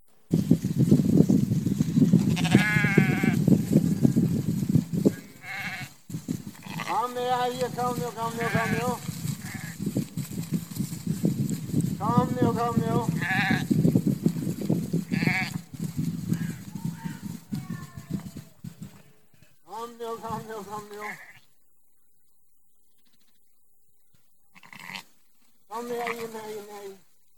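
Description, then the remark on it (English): Sheep bleat again and again in a video being played, in wavering, overlapping calls above a steady low rumble of background noise, then fall quiet briefly before a few final bleats near the end. “Did you notice the shepherd knew which sheep were missing?”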